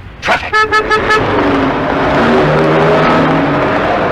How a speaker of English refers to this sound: Traffic. I admire the way all you British children triumph over this danger by learning and using the road safety code, like curb drill.